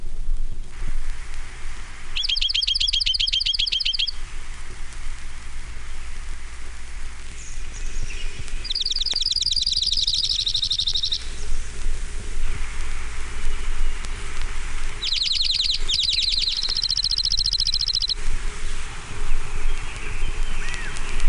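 junco song

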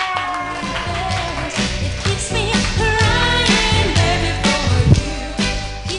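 audience applause and cheering

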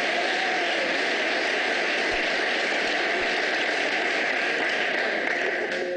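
audience round of applause

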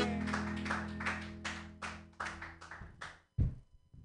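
audience applause

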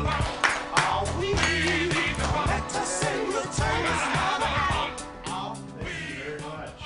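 audience clapping

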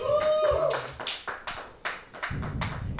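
scattered audience clapping

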